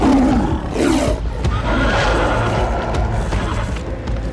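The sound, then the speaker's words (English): A deep, rumbling tiger roar fills the whole stretch, loud, with a growling low-end texture that swells and sustains for several seconds without pause. “With a roar, he dashed toward Bear.”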